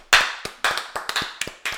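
A short burst of applause: sharp, uneven handclaps, roughly eight in under two seconds, loud and crisp with no voices over them.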